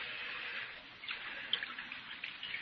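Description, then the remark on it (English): Liquor is poured from a jug into a cup in a steady trickling stream, with small splashes and gurgles near the end and no voices. “Here's the jug, Mr. Hawtree, and I brought you a cup, too. Pour me some.”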